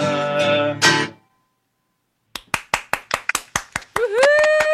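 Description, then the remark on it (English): A sung phrase ends, then after a brief silence a few steady, evenly spaced hand claps ring out, thin like a small group of listeners applauding over a video call after the performance, with a voice rising near the end. “Whoever wants to unmute and applaud, please do.”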